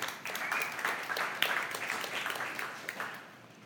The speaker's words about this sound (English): I know that was uncomfortable. You didn't know what to do with that. Some people are clapping, some aren't. You're all just kind of wrestling what to do with it.